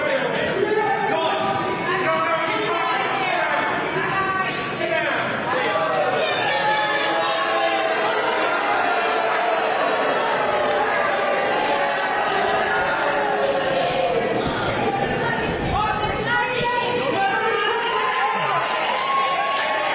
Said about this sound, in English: Booing that man.